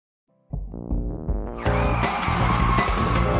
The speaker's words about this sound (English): The car skidded to a stop.